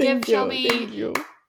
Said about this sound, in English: A round of applause for getting through that song.